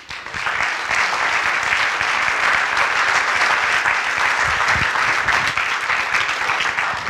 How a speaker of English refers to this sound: Well, let's give everybody one more real big round of applause.